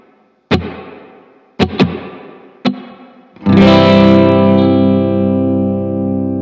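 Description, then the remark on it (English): Four sharp, percussive guitar string slaps, each trailing off in a big-hall reverb effect, followed by a loud strummed chord left ringing with a long, slowly fading reverberant decay. “Can you give us just a string slap? Yep. Something quick so we can hear the decay.”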